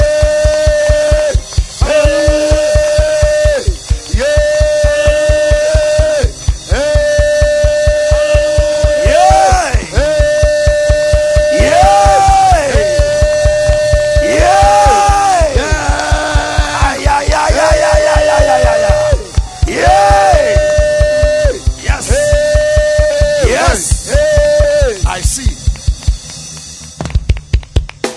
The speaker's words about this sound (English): I want you to clap your hands the way you've not clapped before. To celebrate.